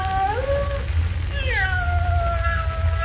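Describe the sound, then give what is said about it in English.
A cat meows plaintively twice somewhere in a musty, dark room, a short rising cry and then a long, drawn-out wail that trails off, over a steady low rumble of background noise. “With a cat meowing plaintively somewhere in the musty darkness of the room, Jimmy begs Perry White not to call Lois.”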